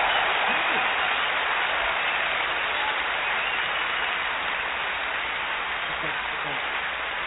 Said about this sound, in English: So, of course, you need to give yourself a big round of applause. Put on your feet.